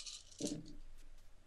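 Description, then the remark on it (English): A quiet clatter of eleven dice tumbling onto a hard surface, with a brief rattling burst followed by a few faint scattered clicks as they settle; no one speaks. “So I'm using 11 dice.”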